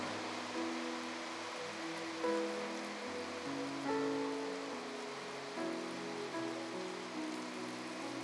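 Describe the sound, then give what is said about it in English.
Steady rain pattering on a roof with no ceiling beneath it yet, a continuous dense hiss that never lets up, with soft sustained musical tones faintly ringing underneath. No one speaks. “And we have to put a ceiling in to dampen the sound of the rain.”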